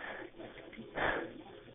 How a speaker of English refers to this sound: Hello? One moment. I'm just getting heavy breathing on the phone and I need someone to talk to me, so please send me both.